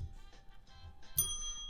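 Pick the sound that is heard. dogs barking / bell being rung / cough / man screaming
bell being rung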